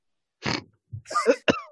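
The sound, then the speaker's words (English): A man gives a sharp, harsh cough, followed by a brief pause and then a few sputtering, hacking vocal noises, as if choking something up. “As he coughs up and you start jumping on,”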